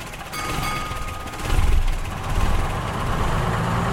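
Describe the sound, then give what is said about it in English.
The engine of a vintage green and cream bus idles, a steady deep rumble with a mechanical rattle on top, swelling slightly louder for a moment midway before settling back. No one speaks. “This is not a bus. It's a great big green and cream time machine.”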